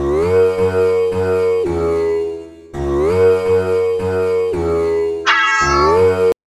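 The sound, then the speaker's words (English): Droning, twangy sitar music plays steadily, and near the end a single drawn-out cat meow rises over it, blending in tune with the melody. “Right, number four is on another old favourite of the false instruments round, the sitar, and also cat for the one vocalisation in harmony that happens towards the end.”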